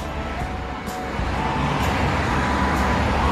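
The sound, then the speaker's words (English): Steady road traffic with cars passing, a constant loud rumble and hiss that swells slightly partway through. No one speaks. “get some reactions from the car drivers. They normally beep at you anyway for some reason. It's a bit noisy.”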